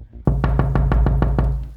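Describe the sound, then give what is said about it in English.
Steady knocking on an apartment door, about eight evenly spaced raps in quick succession, loud, over a low background hum with no voices. “There's a constant, steady knock on the door to the apartment now.”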